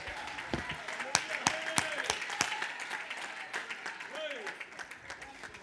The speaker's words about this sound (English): I wish somebody would get excited, clap your hands and magnify the Lord and know that he's going to do it in advance.